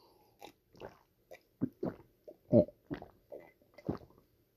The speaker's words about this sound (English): Coffee sip.